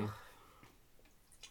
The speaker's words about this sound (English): Just down it. Just shot it better. Not shot it, just like gulp it. Gulp.